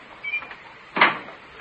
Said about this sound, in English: She closed the basement door. She locked me in.